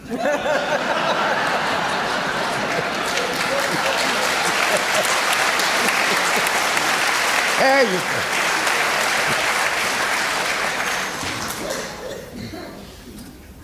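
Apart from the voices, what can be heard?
weak audience applause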